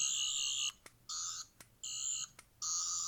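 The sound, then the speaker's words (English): A plastic toy seventh Doctor sonic screwdriver from Doctor Who, with no lights and no spinning parts, gives a shrill, buzzing electronic whine in four steady bursts, each about half a second long, separated by brief gaps with faint clicks. No one speaks. “It's just a piece of, like, plastic that makes one sound.”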